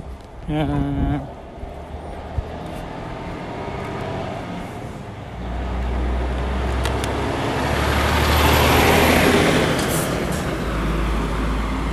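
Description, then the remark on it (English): A loaded logging truck drives past, its deep engine rumble and road roar building steadily and swelling loudest near the end, after a brief voice at the start. “A logging truck going with his bounty.”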